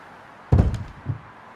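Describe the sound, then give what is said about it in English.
A heavy, sudden crash of a man, knocked off the road by a speeding car, slamming head first into a tree: a loud thud with a brief rattle, followed a moment later by a softer second bump. “Knocking off the road, he head first into a tree.”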